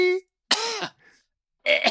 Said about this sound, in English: What are you coughing up there?